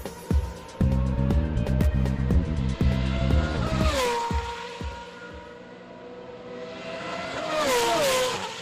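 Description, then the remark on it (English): An A1 Grand Prix race car engine screams, revving hard through quick gear changes, its pitch rising and dropping in sharp sweeps before surging again near the end. “This is the sound of an A1 Grand Prix car.”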